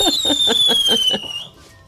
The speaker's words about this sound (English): But you would have heard the fireworks. Listen to this.